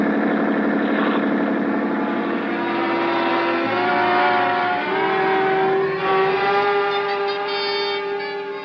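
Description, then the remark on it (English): A police boat's powerful engine roars steadily at high speed, loud, its droning tone rising slightly in pitch with no voices over it. “Start isn't much when a schooner with auxiliary power is matched against a police boat.”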